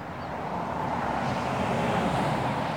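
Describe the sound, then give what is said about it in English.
Cars on a road give off a steady, continuous roar of traffic at moderate loudness, with no single vehicle standing out and nobody speaking. “And the cars.”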